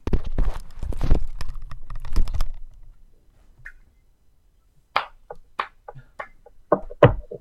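Quick, hard footsteps of someone walking away clatter over a low rumble for a couple of seconds, then fade into near silence before a scattered series of sharp, bright clicks and knocks as a door is slammed. No one speaks.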